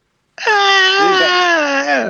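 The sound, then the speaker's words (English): A person vocally imitates a scream: one loud, sustained, high-pitched wail lasting under two seconds, with pitch that wavers and slowly sinks toward the end before cutting off. “He uttered a scream.”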